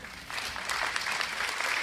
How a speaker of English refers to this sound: All of you are clapping.